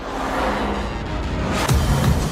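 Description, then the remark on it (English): The engine of a pickup truck with Multimatic GSSV shocks and skid protection roars steadily with a broad rushing rumble as it is driven fast, with a brief rattling burst near the end; no one speaks. “You wanna go a little faster, go for it.”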